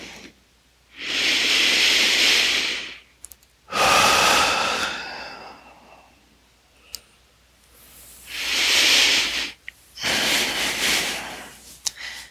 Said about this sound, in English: And last one. Returning to normal breathing.